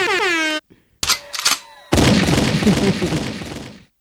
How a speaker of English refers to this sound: It'd be sick to die in an explosion like that. Three explosions.